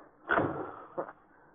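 A back door swings open with a creaking, rattling sweep, then shuts with a short muffled thud a moment later, moderately loud, with no voices.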